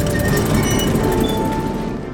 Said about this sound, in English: As she approached the bridge, the last bastion between her and freedom, she heard a familiar, terrifying creak. She looked to the castle's entrance and saw an iron gate descend.